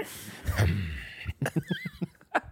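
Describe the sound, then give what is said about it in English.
Loud, forceful Wim Hof style breathing: one long, rough breath followed by a quick series of short, sharp puffs in a steady rhythm, with no talking. “you're doing it again. You're breathing.”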